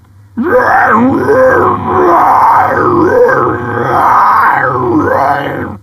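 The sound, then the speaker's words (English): Harsh screamed metal vocals without melody roar continuously for over five seconds, loud and gritty, with the voice lurching and sweeping rather than holding any notes, over a low steady drone. “Melodic vocals versus total noise scream.”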